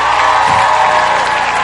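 audience clapping and cheering

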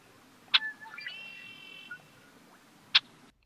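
red-winged blackbird call

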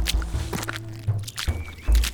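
footsteps walking

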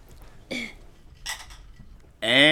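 glasses clinking

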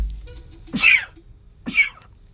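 sneeze

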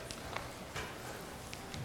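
donkey hooves clip-clopping

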